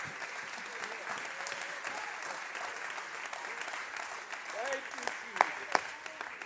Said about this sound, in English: Can we clap our hands unto the Lord right now?